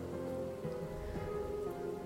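Steady rain patters on a surface in a continuous, even wash, with a soft low hum beneath it and no voices.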